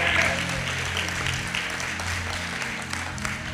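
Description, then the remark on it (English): A subdued crowd cheers and claps to honor the educational professionals standing up, a steady wash of applause with a few scattered voices rising in it, holding at an even, modest level for a few seconds. “That's a mighty low cheer for a mighty big position.”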